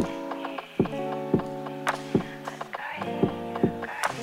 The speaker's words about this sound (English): Electric Force, can y'all clap with me just like that?